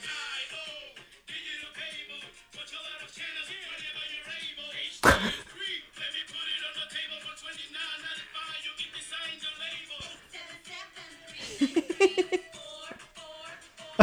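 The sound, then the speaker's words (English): A TV commercial for Optimum triple play, advertising a number for long distance calls, plays with bright, busy upbeat music throughout, punctuated by a sharp slap-like hit near the start and a few quick percussive thumps toward the end. “It was essentially like a Old Navy commercial, but advertising a number where you can call long distance. Optimum triple play.”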